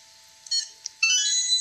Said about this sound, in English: That was not... We have a buzzer malfunction. Yes. Try it one more time.